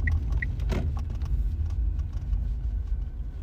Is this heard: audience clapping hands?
no